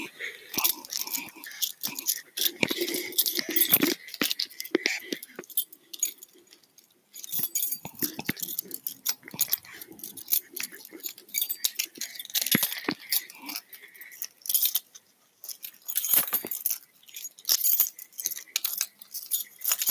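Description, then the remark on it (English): A bunch of metal keys jangling and clinking in repeated bright shaking bursts with brief pauses, crisp and fairly loud throughout. “Next off is going to be some like actual keys.”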